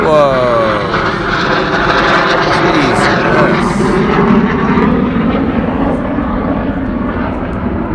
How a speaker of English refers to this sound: What the hell is going on? Some big fighter plane have just whizzed past. I'm sure you can hear. You can probably still hear it. What a disruption to the peace.